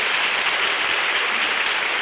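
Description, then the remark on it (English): Steady, dense applause from a studio audience, a continuous crackle of many hands clapping at an even loudness throughout, with no voices over it. “That applause goes from coast to coast.”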